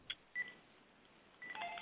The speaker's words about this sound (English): Sorry about that. Didn't know that phone was in here.